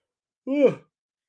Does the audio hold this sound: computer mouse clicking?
no